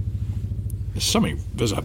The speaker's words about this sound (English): Sorry, it sounds like there's a... Can you hear that? No. I think there's a Chinook going over. Oh, is there?